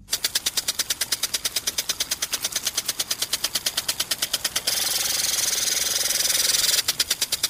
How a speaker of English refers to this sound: That's the sprinkler, baby.